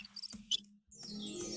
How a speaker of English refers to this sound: Then there's a couple other ones like scary crickets.